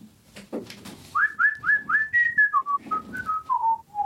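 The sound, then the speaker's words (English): A person whistles a short, bouncy tune of about a dozen clear notes that step downward in pitch, fairly loud, with some brief low murmuring at the start. “So, hey, whistle boy.”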